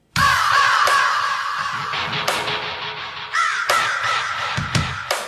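A raven caws repeatedly, loud and close, with harsh croaking calls running almost continuously for several seconds and a few sharper bursts toward the end. No one speaks.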